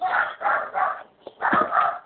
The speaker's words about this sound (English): Excuse me, I just need it. My dogs are going crazy.